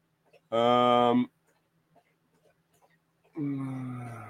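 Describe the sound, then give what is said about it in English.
A donkey brays twice, loud, each call a harsh, strained blast lasting about a second, separated by a short quiet pause with faint background noise. “Yeah, the donkey's super nice. And so I think he's missing his friend.”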